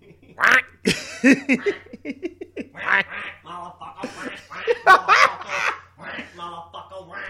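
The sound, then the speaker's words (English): Loud, nasal duck quacks repeat in quick bursts over a steady low bass hum, prominent, with the quacks forming a choppy rhythmic pattern in a trap beat. “That fucking ducky on the track.”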